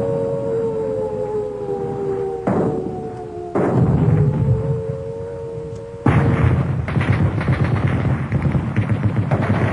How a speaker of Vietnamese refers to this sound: Tôi như choàng tỉnh khỏi một cơn mơ khi những tiếng nổ rền như bắp rang của súng đạn, những tiếng bọp bọp của trung pháo, tiếng cùng cùng của đại liên, tiếng ùng ục của đại pháo. Tiếng trung pháo nghe ngọt nhất.